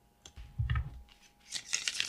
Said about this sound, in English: I'm just going to quickly shuffle, so block your ears. I apologize.